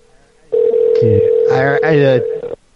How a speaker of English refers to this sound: This is, they're allegedly transferring us, right? To an ever-ringing phone,